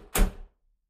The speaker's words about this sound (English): Close the door, please.